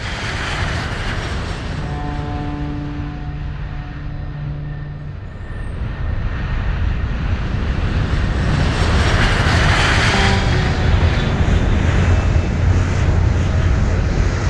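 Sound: airplane engine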